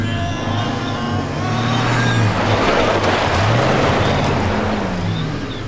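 car driving

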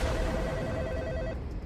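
telephone ringing

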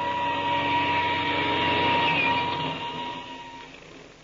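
airplane engine starting up

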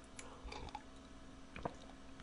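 sipping tea

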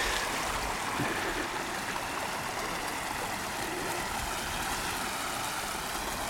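small stream flowing

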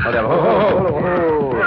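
horse whinnying

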